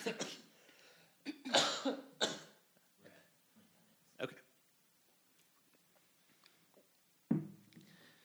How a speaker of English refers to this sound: I'm going to cough really hard real quick.